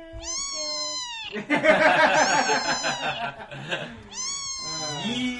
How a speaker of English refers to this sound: Oh, well, that was an angry cheetah. That was an angry cat. Oh, my God. That was an angry cat.